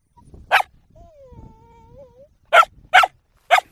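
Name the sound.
dogs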